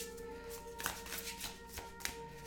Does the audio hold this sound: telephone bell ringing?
no